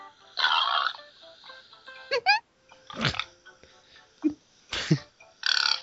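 A pig sitting in its little pen grunts and snorts in a series of short, rough bursts with small pauses between them, moderately loud, with some faint background noise underneath.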